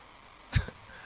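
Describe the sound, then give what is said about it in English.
A single short sneeze, a sudden burst with a sharp breathy hiss and a brief trailing puff, standing alone against a faint, steady background hum. “God bless you, my dear.”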